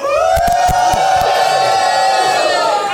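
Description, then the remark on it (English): A live audience, many of them members of the Duck Hunters Facebook group, cheers loudly for about three seconds, a held, high-pitched shout ringing steadily over the roar, with a few sharp claps or whoops near the start. “Many of whom are here, as you can tell.”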